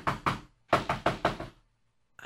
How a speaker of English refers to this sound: he was eating his supper when there was a knock on the door.